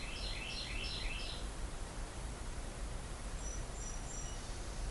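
Outdoor birdsong: a quick run of four bright, repeated chirping notes, then fainter whistles later on, all over a steady hiss of background noise with no one talking.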